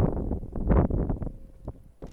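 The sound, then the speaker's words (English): Wind on a mountain buffets the microphone in uneven gusts, a low, rough rumble that swells and fades over a couple of seconds, with no voices. “I found if I stand back here, it's not as windy, right?”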